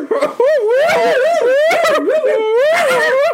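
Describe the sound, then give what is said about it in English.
A dog whimpers and howls in a loud, continuous run of wavering high-pitched cries that rise and fall for a few seconds with barely a pause. “Hey there, little doggy.”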